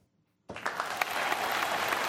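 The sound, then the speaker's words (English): Applause bursts in after a brief silence when an applause sign goes on, a dense crowd of clapping hands that quickly swells and holds steady and loud, with no voices over it. “In fact, applause sign on.”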